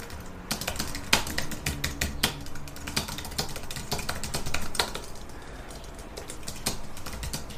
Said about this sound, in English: I'm just typing in.